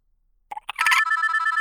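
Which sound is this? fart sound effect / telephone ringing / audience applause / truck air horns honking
telephone ringing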